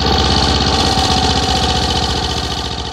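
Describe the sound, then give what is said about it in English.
A loud small engine roars steadily like a lawnmower, its rapid rhythmic chugging running continuously for the whole clip before easing off slightly at the end. No voices are heard. “Right in front of him, there was an 11-foot-tall lawnmower.”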